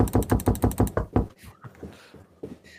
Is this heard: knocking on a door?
yes